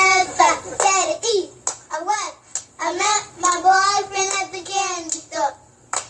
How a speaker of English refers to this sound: is citing yet another children's clapping game, Uno Dos Siesta.